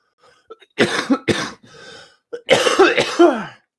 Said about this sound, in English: I would like to take this moment to apologize now for the excessive amount of coughing.